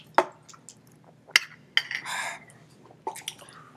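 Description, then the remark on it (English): A few sharp glassy clinks ring out, followed by a short wet slurping gulp as people knock back small green plant-based shots, with light clatter trailing off afterward. “And we about to do a plant-based shot right now, so...”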